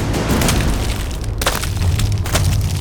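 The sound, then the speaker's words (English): Heavy thuds and sharp cracking bursts as the ice of a mountain overhang breaks under repeated stamping jumps, over a low rumbling background, with two louder cracks standing out near the end. No voices. “heard the ice crack beneath her feet.”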